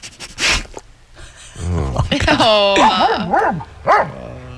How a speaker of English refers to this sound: Oh, that was a sad dog noise.